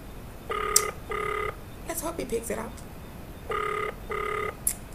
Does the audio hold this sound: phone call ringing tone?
yes